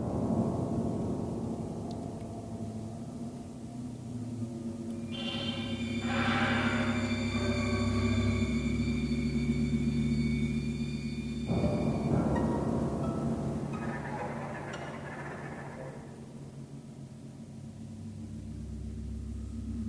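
An eerie orchestral film score for a spider scene in a temple: low sustained strings drone beneath high, shimmering held tones that enter midway, with tense swells and a busy, rumbling passage before the music settles. No one speaks.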